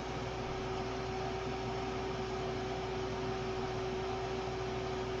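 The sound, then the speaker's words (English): A microwave oven runs with a steady, even electrical hum and a faint tonal drone, unchanging throughout at a moderate level, with no voices or other sounds. “All microwave. Listen.”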